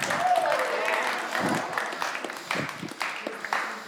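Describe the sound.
An audience applauds as a speaker is invited up to give the word, dense, steady clapping that tapers off into scattered claps, while a few voices murmur underneath.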